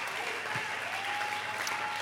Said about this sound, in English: Listen, I know there are some people in this room by the sound of your cheering and clapping that believe this stuff is real.